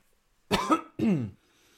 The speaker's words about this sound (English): I'm glad that just coughed, by the way.